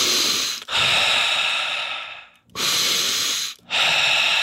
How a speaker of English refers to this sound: Breathing.